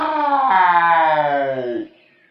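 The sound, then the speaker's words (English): A single loud, drawn-out roar of pain, voiced by a person as a tigress, holding strong for nearly two seconds with a slowly falling pitch before cutting off abruptly into quiet. “The whole jungle heard how she roared with fierce pain.”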